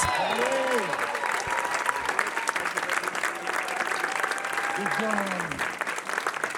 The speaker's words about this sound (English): This definitely needs to keep going with the applause here. Jonathan Frakes, ladies and gentlemen.